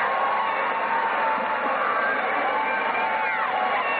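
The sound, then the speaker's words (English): A basketball crowd cheers loudly and steadily as the overtime session of a game involving Rapid River starts, a dense, unbroken roar of many voices with scattered shouts and whoops rising out of it. “And listen to the crowd as we start the overtime session.”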